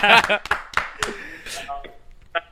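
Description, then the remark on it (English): A handful of sharp, scattered hand claps ring out, brief and uneven rather than a full round of applause, mixed with voices talking and exclaiming at the start, giving a round of applause for a guest. “Round of applause for”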